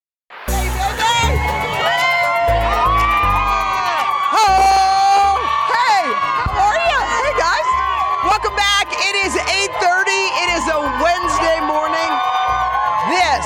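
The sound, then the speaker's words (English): A large outdoor crowd at Rockefeller Center cheers and whoops continuously, with high-pitched shrieks and yells rising over a dense, loud roar of many voices for the full length. “Is a Ted Lasso kind of crowd out at the Rockefeller Center.”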